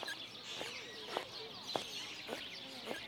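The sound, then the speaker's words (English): A woman's squeaky shoes chirp in a steady walking rhythm, about five sharp squeaks roughly half a second apart, over a faint busy background murmur. “Did you just hear what I heard? That woman has squeaky shoes.”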